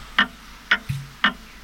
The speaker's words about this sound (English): This grandfather clock.